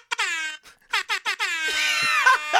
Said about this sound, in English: Let me tell you something. The Jamaican air horn will never get old. I got an app, and I love it, and it's got some cool sound effects on it. But I mean, that's always funny to me.